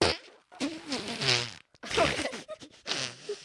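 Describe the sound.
A voice imitates farting with several sputtering, buzzing mouth noises in separate bursts, loud, with brief pauses between them.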